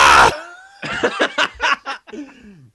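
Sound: imitated scream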